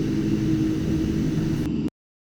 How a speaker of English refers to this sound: A couple of days later, our plan was put into place, and we were about to start to leave when a terrible noise from above sounded. And suddenly, a plane crashed into the Darien Gap.